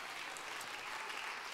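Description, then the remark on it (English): A church audience clapping their hands in praise to God during a sermon, a steady, dense wash of many overlapping claps with no distinct rhythm, sustained at an even level throughout. “Clap your hands, all ye people, and shout unto God with the voice of triumph.”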